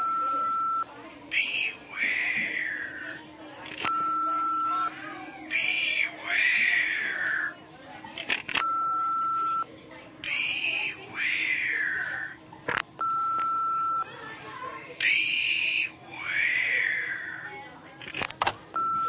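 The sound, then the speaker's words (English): An answering machine plays back several anonymous calls, each marked by a steady electronic beep, with brief breathy whispering and sharp clicks as the caller hangs up, repeating four times. “Someone keeps calling, whispering, then hanging up. I got so bugged I stopped answering the phone. Here, listen to the answering machine.”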